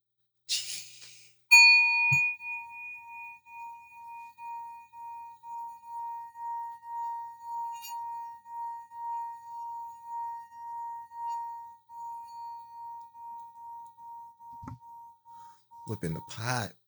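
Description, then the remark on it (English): A gong is struck once during a guided affirmation and breathing session and rings out in a long, steady, pure tone that pulses gently as it slowly fades over about fourteen seconds, with brief voices at the start and end. “Y'all fucking up my gong.”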